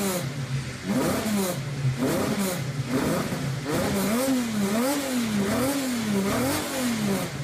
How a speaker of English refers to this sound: To give a little bit of comparison, the fully fledged engine, like a not detuned version, was capable of 700 horsepower at 13,000 RPM. It was naturally aspirated. This was not a forced induction engine. And it sounds incredible.